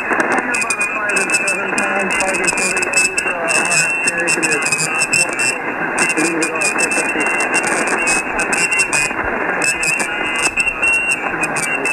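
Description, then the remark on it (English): A crackling, hissing radio contact between stations fills the whole stretch, dense static and QRM interference holding a steady, harsh level throughout, with garbled voice-like murmurs buried in the noise. “It's just we got a lot of static, down here and some QRM, but we hearing you.”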